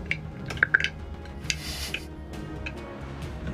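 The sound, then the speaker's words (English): Four six-sided dice (4d6) manually rolled in a dice box for acid splash damage during a tabletop game: a burst of sharp, bright clicks and clatters, a few louder taps early on, then softer rattling settling over a low background hum, with no talking. “So they fail their dex save, so it's just 4d6, which I'm gonna manual roll.”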